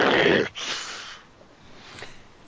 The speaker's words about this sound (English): So you see the wolf jump, but it hunches itself down close to the ground and growls at you.